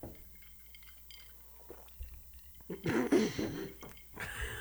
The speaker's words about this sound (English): That was a big gulp. That was me taking a shot.